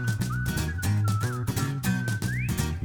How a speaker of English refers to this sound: This party's leaving soon, and your dad whistles a happy tune.